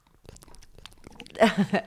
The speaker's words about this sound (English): Here's a little glimpse of the mouth noise I was making before.